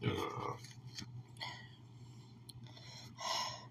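A long, low, rasping burp drawn out over a few seconds, with breathy, gurgling bursts rising and falling through it and no talking.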